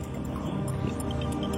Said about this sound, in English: Roar. Lion.